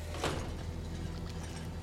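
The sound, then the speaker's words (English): A sliding door in a video game opens with a brief airy whoosh at the start, followed by a softer mechanical hiss, all over a steady low electrical hum. No one speaks. “I just opened it back up to the Commonwealth. I spun around to the door.”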